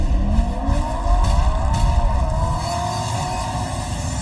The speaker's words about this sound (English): Your engine!